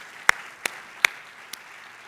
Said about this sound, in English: And I know for a fact we have some first-time guests here today. So can we just welcome them with a round of applause, thanking them for being here?